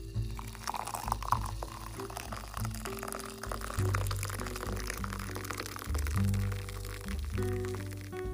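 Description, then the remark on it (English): Nescafe coffee pours steadily into a mug for several seconds, a continuous liquid splash with a bright trickle, set against low sustained musical tones in the background. “And I'm using my favorite coffee mug called Barely Awake that I got for my weekend of Rodeo Durango”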